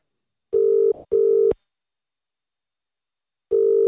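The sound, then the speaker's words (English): An outgoing phone call's ringing tone while calling the caller's mum and dad: a steady electronic double ring, a short pause, then the double ring starting again. It sounds thin and clear, as if through a phone speaker, with no voices. “would you mind putting in my mum's number there? Mum and Dad. Calling now.”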